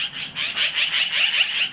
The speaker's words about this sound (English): All of it accompanied by the magpie's call, which is not exactly the bird world's sweetest.